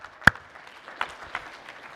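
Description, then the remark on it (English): Scattered clapping from an audience at a live worship service: one sharp, loud clap at the start, then a few softer, irregular claps over a faint background murmur, with no voices standing out. “I especially appreciated the clapping, and it made me think all the way back to high school.”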